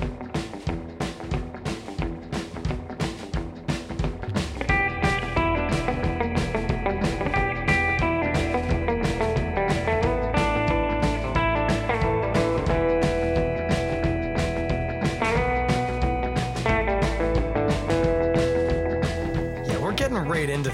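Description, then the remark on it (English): An upbeat instrumental theme song: a steady, driving drum beat opens alone, then sustained melodic instruments join after a few seconds and play over the drums at a fairly loud, even level. “Why, it's the delightful drums and intro sounds of our theme song”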